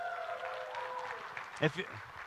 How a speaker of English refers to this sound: Our family is growing, and we are excited about that. You can give a cheer for that.